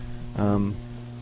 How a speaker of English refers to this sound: It could be our connection, possibly, that's messing us. I hear some fuzzy static in the background. Do you? Yeah, I hear it here, too.